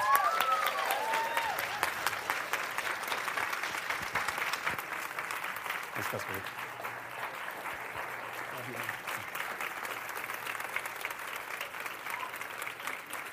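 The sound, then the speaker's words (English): Sustained applause at Grace Point welcoming a speaker as he comes up one morning, a dense, steady wash of many hands clapping at an even loudness, with a few indistinct voices mixed faintly underneath. “You guys might want to wait till the end before you decide if you want to clap that much.”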